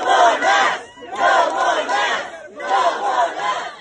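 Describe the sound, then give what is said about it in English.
An angry overflow crowd at a school board meeting in Tennessee shouts together in three loud, rhythmic bursts, like a chant, with brief pauses between. The voices are dense, many people yelling at once. “At a different meeting in Tennessee, there was an overflow crowd.”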